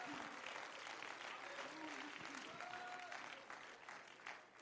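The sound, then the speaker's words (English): An audience claps hands to give praise to the Lord during an evening church service, a dense, continuous wash of applause lasting several seconds, steady and fairly loud, with faint voices mixed in before it thins slightly at the end. “Why don't you clap your hands and let's give praise to the Lord.”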